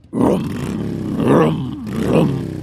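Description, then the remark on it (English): A bright yellow Lamborghini sports car, driven at high speed around a corner. Its engine roars in three loud, surging revs, each swelling and easing off with a deep, throaty rumble and a gravelly edge. No voices are heard. “A sound louder, more mechanical than you've ever heard before.”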